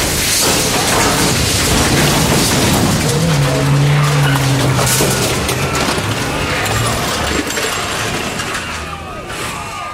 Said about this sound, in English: Out of control bus!